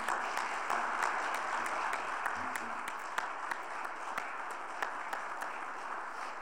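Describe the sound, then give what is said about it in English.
A crowd claps steadily in dense, continuous applause, many hands overlapping with sharp individual claps popping through, holding an even level for several seconds. “You can clap.”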